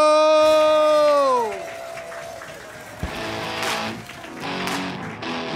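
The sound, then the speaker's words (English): A loud tone slides downward and fades, then a comedy show crowd at Stand Up New York Labs breaks into steady applause and cheering for the hosts of a birthday bash, with scattered whoops rising out of the noisy clapping. “Let's get a big, bad round of applause to your hosts tonight”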